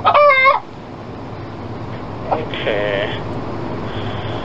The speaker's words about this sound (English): Fucking chicken. Oh, is that your chicken? That's the chicken, yeah. It's my chicken. My little chicken. It's your chicken. It's my chicken, yeah. Little chicken.